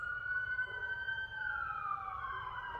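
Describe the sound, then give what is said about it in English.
A wailing emergency vehicle siren sweeps steadily in pitch over a low rumbling background, with no voices present. “You hear the sirens, which is a representative of Archangel Michael and them.”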